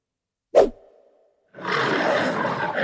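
A lion roars: a sudden loud burst fades into a short low rumble, then a harsh, noisy roar surges up and holds strong to the end, with no talking.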